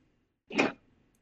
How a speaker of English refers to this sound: Hit the arrow keys, it's extremely loud, but they make funny noises.